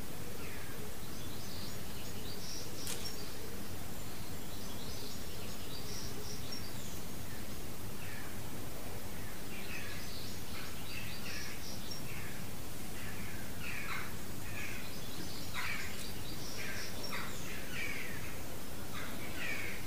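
birds calling outdoors

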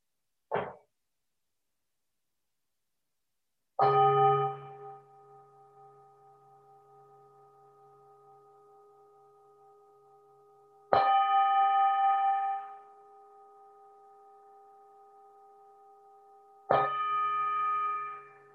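bell ringing and fading

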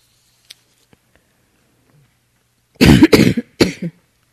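coughing

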